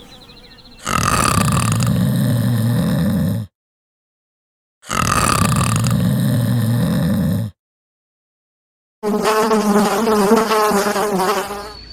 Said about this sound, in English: A sharp buzzing sound pierced the morning calm.